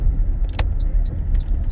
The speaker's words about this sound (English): Oh my god. The car scared the Jesus out of me.